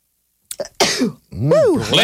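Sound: sneeze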